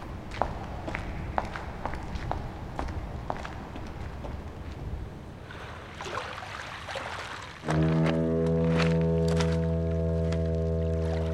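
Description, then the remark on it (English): Steady footsteps walk at an even pace down toward a deserted pier at night in fog, over a soft ambient background, then a loud, deep droning horn sounds in and holds to the end, covering the steps. “Then we get moving again.”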